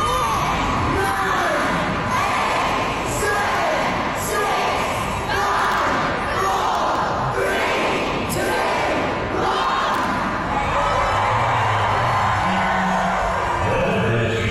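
Harry Potter fans at King's Cross Station in London roar and cheer on Back to Hogwarts Day, September 1st, in a steady, dense wall of overlapping voices, with rhythmic shouted bursts as they count down until 11 a.m., staying loud throughout without pause.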